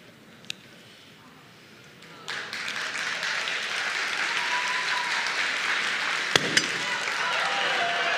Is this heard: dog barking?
no